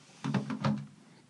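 A chair is shifted, giving a short scraping creak with a few rough bumps that lasts about half a second before fading into quiet.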